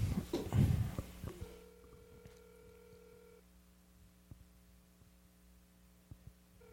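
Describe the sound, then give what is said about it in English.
An outgoing call's ringback tone: one steady two-second electronic ring after a brief clatter, then a quiet pause with a low background hum and faint clicks. “So, we're calling”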